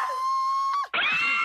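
Women cry out in loud, sustained, high-pitched wails that break off briefly, then surge back as a layered chorus of keening voices, with no spoken words.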